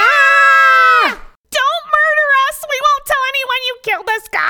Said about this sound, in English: Suddenly, the door flies open and the pair are blinded by the light from a butane lantern. It is held by a man whose face they cannot see. Dennis and Steve once again grab each other in fear and scream.